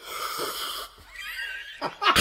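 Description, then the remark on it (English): Someone imitates with the voice a loud, noisy slurp of drinking coffee, a long airy sucking hiss that rises in pitch, then ends in a couple of sharp breathy bursts. “That's how my grandpa used to drink his coffee.”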